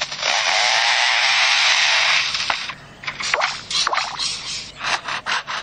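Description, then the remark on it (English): A lyrebird imitates a chainsaw: a steady, loud buzzing whine for a couple of seconds, then breaking into choppy, sputtering bursts like an engine revving and cutting out. “They can imitate the sounds of chainsaws.”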